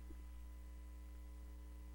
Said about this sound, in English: Hello? Yeah, I'm here. I don't know what that is okay, in the background. Okay, I'm getting interference there, yeah.